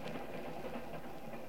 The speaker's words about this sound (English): I leaned back and closed my eyes. Listened to the rhythm of the train.